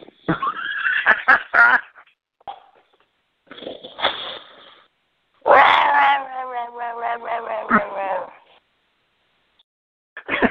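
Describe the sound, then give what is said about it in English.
A loud, drawn-out yowl from a man sounding like a cat in heat, wavering for a few seconds, preceded by shorter strained cries and bursts of noise. “Does he sound like a fucking cat in heat for a second there?”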